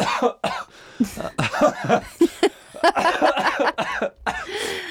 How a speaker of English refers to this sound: No, that was an impromptu coughing fit.